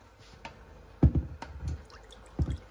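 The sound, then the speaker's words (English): Water poured from a glass into a cooking pot splashes and sloshes in a few uneven bursts, some of it spilling outside the glass, moderately loud with no talking. “Yeah, I got about a gulp's worth outside of the glass. Who cares? And a little more than a gulp's worth, as you heard.”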